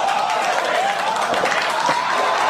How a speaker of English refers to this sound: First of all, why are they clapping that it exploded?